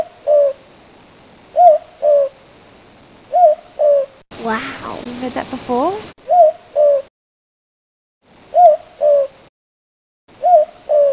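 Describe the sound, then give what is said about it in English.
An owl hoots repeatedly in low, soft notes, mostly in pairs and small groups with pauses between, clear, played as an audio clip from an environmental Queensland website, while a person briefly speaks partway through. “It goes hoot hoot. Hoot hoot hoot hoot.”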